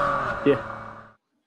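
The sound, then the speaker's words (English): A small non-turbocharged three-cylinder car exhaust burbles with a steady, poppy note, rises in a brief blip partway through, then cuts off after about a second. Moderately loud. “Poppy little humorous exhaust note going on there.”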